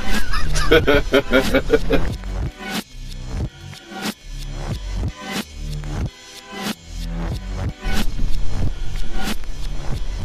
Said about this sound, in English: Seagulls. White. Oh. They are absolute bastards, aren't they?